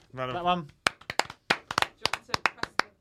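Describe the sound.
A brief voiced call, then a short round of crisp hand clapping from a few people for a guest comedian, about a dozen sharp claps in an uneven patter.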